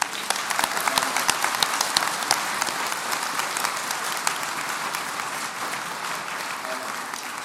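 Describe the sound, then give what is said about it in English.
A crowd breaks into sustained applause for all the speakers as an event wraps up, dense, steady clapping that holds at an even loudness for several seconds without letting up. “The first of all, can we get a big round of applause for all our speakers?”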